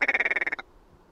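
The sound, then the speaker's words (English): A willow ptarmigan call: a rapid, harsh rattle of about a dozen throaty pulses in quick succession, fairly loud, ending abruptly after half a second and followed by quiet. “Willow ptarmigan.”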